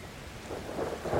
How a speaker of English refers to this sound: He climbs a tree in a storm to experience the storm. And it's this harrowing wind and rain and lightning, and he's up there swaying back and forth.